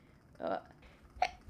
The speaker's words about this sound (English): I think the only one that I didn't say in my gratitude list was, hey, I have to sneeze, hold on.